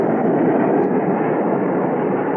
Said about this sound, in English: Oh, that's a jet taking off from the north runway. It'll pass right over the house.